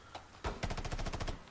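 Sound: video game gunfire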